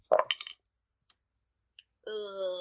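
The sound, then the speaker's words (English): A quick rattling clatter of dice tumbling onto a table in a tabletop game, rolling a -3, followed by a couple of faint ticks and a brief pause before someone starts talking. “That was a -3. On the dice.”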